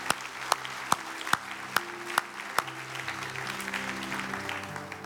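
An audience applauds, giving the Lord a clap, with steady, dense clapping, punctuated by several sharper individual claps in the first few seconds, with faint sustained organ-like tones running underneath.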